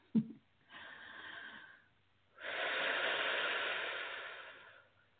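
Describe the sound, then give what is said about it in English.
A slow, deep breath is drawn in and then released in a longer, louder exhale, after a faint click at the start; deep breathing done to help move energy. “I do a lot of deep breathing to help move the energy, so that's what's happening.”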